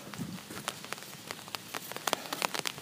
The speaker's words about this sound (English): Oh, the rain has started in earnest. There we go.